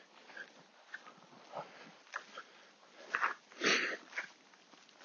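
A dog sniffs and snuffles in quick, irregular bursts with a few louder wet snorts, quiet in between and no one talking.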